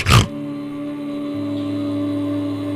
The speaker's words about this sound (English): Yeah, I think we found Wilbur the pig. Yeah, there's Wilbur.